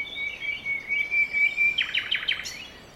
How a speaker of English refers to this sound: Several annoyed and squawking birds later, Gruntly gave up the wing idea.